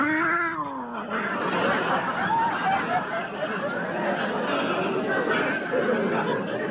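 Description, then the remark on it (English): A cat named Clobber caterwauls, opening with a loud, wavering yowl that bends up and down, followed by continued growling and hissing over a busy, noisy background. “He's just a little nervous with strangers.”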